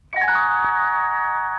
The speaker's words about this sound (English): You will know it is time to turn the page when Tinkerbell rings her little bells like this.